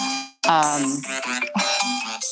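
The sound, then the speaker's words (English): A pre-programmed phone alarm, set as a five-minute reminder before math time, plays a bright, tonal melody of stepping electronic notes, loud, sounding continuously for a couple of seconds after a brief gap. “It's 5 minutes to math time and the alarm is going off on my phone.”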